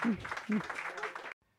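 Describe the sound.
An audience applauds in a dense, steady wash of clapping, with a few voices calling out underneath, before the sound cuts off abruptly after about a second.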